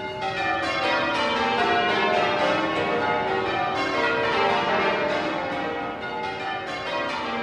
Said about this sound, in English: They've just started to ring now, and they started off ringing all 12 bells from the highest note to the lowest.